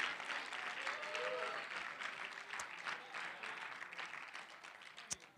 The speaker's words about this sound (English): If you know you're blessed to have the Holy Ghost this morning, give the Lord a great big hand clap right now. Thank Him for that.